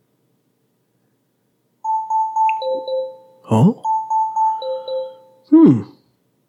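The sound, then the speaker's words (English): A Disney voice assistant's timer alarm chimes in a repeating two-tone electronic pattern of steady higher and lower pulses, playing through twice, with short vocal bursts breaking in between and at the end. “Oh, it's the timer.”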